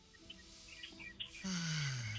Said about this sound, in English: You're actually under a tree. That's hilarious. You tell those birds to shut up. They're on the radio.